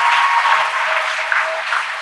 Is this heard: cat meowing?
no